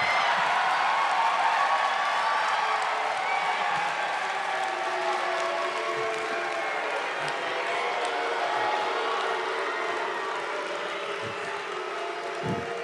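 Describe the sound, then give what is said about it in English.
A large live crowd roars continuously, a dense, sustained wall of cheering voices whose drawn-out tone could easily be mistaken for booing, holding steady for the whole stretch. “Sounds so much like booing.”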